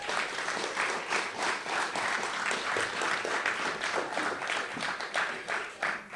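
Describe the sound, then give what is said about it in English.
Sustained crowd applause in Manorhamilton for two guests from the 1994 Leitrim championship-winning team, many hands clapping in a dense, steady wash of noise that stays loud and even for several seconds, with a faint hint of voices underneath. “A big round of applause for the two lads.”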